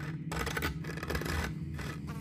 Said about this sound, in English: A scratching noise emitted from inside of the appliance. Damn rats.